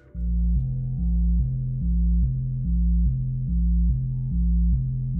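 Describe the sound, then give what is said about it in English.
A slowed, stretched phone ring turned into a deep, droning tone that warbles steadily between two low pitches, washed in heavy reverb and sustained throughout with no voices. “So I use that as inspiration, and I got this sample of a phone ringing. And I took that and I stretched it out a whole bunch and I slowed it down a bunch.”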